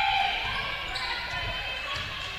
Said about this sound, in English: Smith into the corner. It's where Cannon has it. And dribbles back up top.